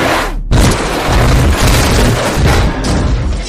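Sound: car crash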